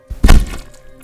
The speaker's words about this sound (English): The audience gasped and cheered, but then something went wrong. The man slipped and fell, his body crashing to the ground with a sickening thud.